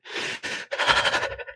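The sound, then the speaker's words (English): Heavy, panicked breathing of a frightened girl cowering and hiding her face in a story set in Innistrad: two quick ragged gasps followed by a longer shuddering breath with a strained, trembling voiced edge, fairly loud and with no speech. “The girl cowers down, hiding her face behind her arms, trying to lean back against the tough flank of Ruprecht, breathing heavily, panically.”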